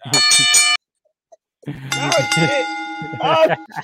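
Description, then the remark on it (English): A bell clangs rapidly and repeatedly in two loud bursts separated by a brief silence, its bright metallic ringing tones overlapping and sustaining between strikes. “The damn bell got Tourette's.”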